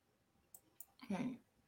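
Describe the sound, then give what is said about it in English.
Two quick, light clicks of computer buttons a moment apart as someone checks websites, followed by a brief vocal sound. “I'm clicking buttons trying to figure out what is a real website and what's not a real website”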